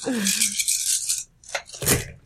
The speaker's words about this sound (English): Okay, so that's rolling 20 dice.